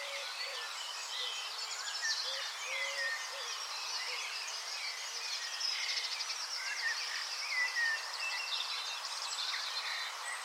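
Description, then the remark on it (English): Several blackbirds sing the same repeated phrases together, forming a dense, steady chorus of overlapping whistles and chirps that carries on throughout, with no talking. “You can hear them doing this on the recording that I made that day, which is playing now.”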